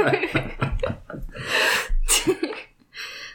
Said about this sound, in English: Ah, the yawn was contagious.